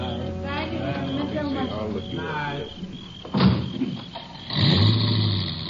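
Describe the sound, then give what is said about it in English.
Voices talk at first, then a car door thumps shut and a car engine starts up and pulls away, moderately loud, as the last guests leave a house at sundown. “About sundown, the last of the guests left the house.”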